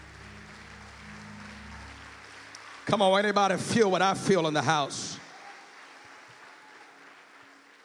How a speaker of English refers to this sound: Clap your hands as loud as you can clap them.